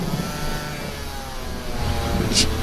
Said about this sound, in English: There go those chainsaw lumberjack guys again. I don't know what they're doing, chopping down trees, keeping the forest clean, freshly raked for your foresting pleasure, I guess.